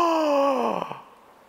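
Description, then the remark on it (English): A single voice imitates the shocked gasp of a king's court as a drawn-out, falling moan-like 'oh' that trails off after about a second, fairly loud, with no other talk. “and all of a sudden the court goes silent. There's a gasp.”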